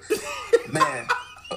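A person coughs close by in a quick series of four or five short, rough bursts, irregularly spaced, with a slightly voiced, throaty edge and no talking.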